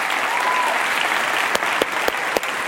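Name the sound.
audience applause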